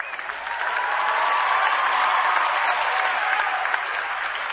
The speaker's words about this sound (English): Yeah, hope you're clapping in 60 years.